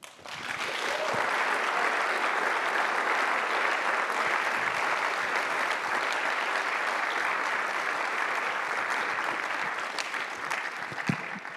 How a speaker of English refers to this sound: Could we please have a massive round of applause to our two speakers today?